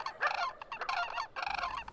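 Birds flying overhead at a zoo at night give a rapid series of harsh, honking calls that overlap almost continuously, with one brief pause midway. The calls are clear, with no talking.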